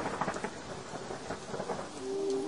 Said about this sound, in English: Big black clouds rolled across the sky, and the thunder shouted, their angry eyes flashing with the light of 100 suns.